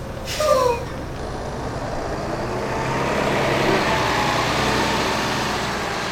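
A large tour bus engine rumbles steadily as it drives off, opening with a short hiss of air brakes and a falling whine, then a broad, continuous road noise that swells slightly.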